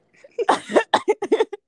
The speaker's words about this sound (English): I literally sound like Frank Gallagher. I can't form a sentence without coughing.